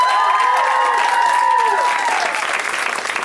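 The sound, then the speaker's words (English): A crowd at a comedy show at the UCB claps steadily and loudly throughout for the comics in back, with high whoops and cheers rising and sliding above the dense applause before it starts to thin toward the end. “Let's hear it for them.”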